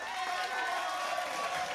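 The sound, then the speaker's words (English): A crowd cheers and applauds in a steady, dense wash of clapping and shouting voices, sustained at even loudness throughout the brief moment, like a canned celebration sound effect, played to cheer the Stonehead of the Month, Dr. Hugo Anderson Wymark. “And the reason we are cheering Dr. Hugo Anderson Wymark, same reason, you know, we cheer all our Stoneheads.”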